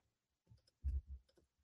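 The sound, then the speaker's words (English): A short, uneven burst of keyboard typing as someone pounds the keys to copy and paste, several quick key clicks and a few heavier thumps landing close together, with no voices. “Yeah, I am literally pounding the keys. Copy, paste.”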